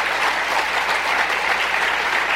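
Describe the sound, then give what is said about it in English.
An audience claps steadily, a dense, loud wash of hand claps with no pauses and no talking over it. “Don't clap, because I only got 3 minutes.”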